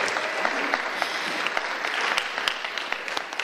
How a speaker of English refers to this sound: Can we just give them a round of applause for being here?